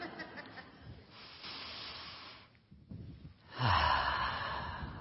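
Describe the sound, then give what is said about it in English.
A crowd exhales together in a broad, airy whoosh, softer breathy rustles at first, then one big loud collective breath out that swells and lingers for over a second. No one speaks. “Conspire, breathing together.”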